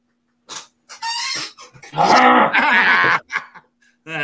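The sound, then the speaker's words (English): A rocking chair creaks in several uneven bursts, groaning and squeaking with a tonal, strained quality. The longest creak is loud and drawn out, followed by shorter creaks. No one speaks. “And listen, rocking that chair, let's see how it worked.”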